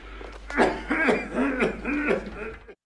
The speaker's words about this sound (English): That guy was annoying. All he did was sit there and cough. How much did he get paid to sit there and cough?